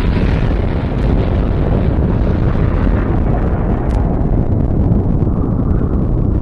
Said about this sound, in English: Oh, that explosion sure is a beautiful thing, isn't it?